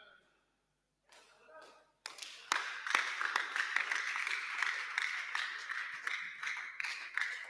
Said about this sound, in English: The man is clapping, yes.